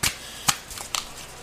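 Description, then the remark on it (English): Quick papery riffling of tarot cards from a custom deck: a sharp flutter at the start, another crisp snap midway, then lighter slaps and rustles as the cards fly out of the hand and scatter, with no voices. “And the cards just flew out of my hand when I said that.”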